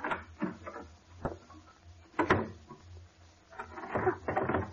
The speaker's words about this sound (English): Why are you locking the door? Now, don't you be alarmed. But it's necessary that we aren't disturbed.